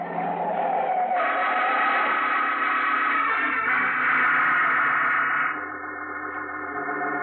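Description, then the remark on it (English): A car skids toward a pedestrian in the street on New Year's, with a long, loud tire screech mixed with engine roar, lasting several seconds before easing slightly toward the end. No one speaks. “Hey, mister, look out for that car. You're gonna get run down if you don't.”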